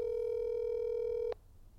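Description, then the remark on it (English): A telephone line tone while a call is placed to a brother: one steady, buzzy electronic hum at a single pitch that holds for just over a second, then cuts off abruptly into near silence. “I'm calling my brother on the line right now so I can get him on the show.”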